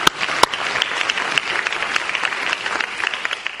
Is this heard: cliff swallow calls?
no